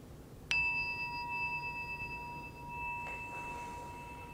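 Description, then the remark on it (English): A meditation bell is struck once, its clear, bright tone ringing out and sustaining steadily for several seconds over a low background hum, with no voices. “In this last minute together, no more bells.”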